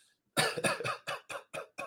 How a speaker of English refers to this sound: Guys, the cough is returning. It's the black lung, Pop. Oh my God. Guys, we're wrapping up today's show. I've got to just go cough for like 10 minutes straight. I don't know if I swallowed an ice cube or what.